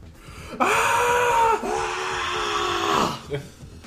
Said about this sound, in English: I yell differently. Like hyper voice. That was like a B sharp. Yeah. This is more of a D minor.